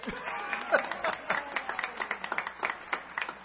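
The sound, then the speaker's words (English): A church audience at Community Baptist Church claps for its children's ministry directors in a soft, steady patter of overlapping hand claps with occasional sharper claps, lasting a few seconds without any clear voices. “So now is a good time to clap.”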